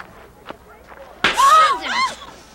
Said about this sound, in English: So, I captured that not only because the slap made me laugh, and it's like the second or third time that the coach has slapped somebody